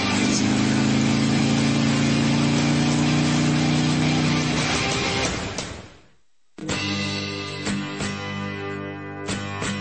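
A motorcycle engine revs up loudly, then cuts out briefly before settling into a steady, rumbling idle with occasional throttle blips.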